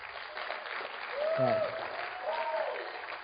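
An audience claps steadily for a few seconds, a dense wash of applause swelling in the middle, with a couple of voices whooping or calling out over it.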